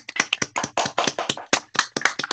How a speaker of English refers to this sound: That's good. Oh. Little clap for that one.